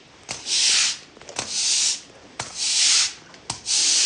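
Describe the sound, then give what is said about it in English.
A broom sweeping dry concrete: four steady, hissy swishes in an even back-and-forth rhythm, each lasting under a second with short pauses between, and no voices. “The shh, shh on dry concrete is quite different from the shh, shh, the hiss that you get from when you're sweeping up and the ground's wet.”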